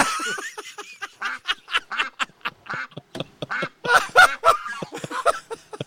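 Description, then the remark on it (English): A person imitates a duck, letting out a rapid, nasal run of quacks in irregular bursts, fairly loud, with no other talking. “Who has that impression?”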